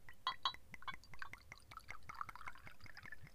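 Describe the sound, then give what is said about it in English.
Tequila pouring into a small shot glass, a steady trickle with bright clinks and glugs at the start, continuing for a few seconds with no talking. “So I'm pouring it in.”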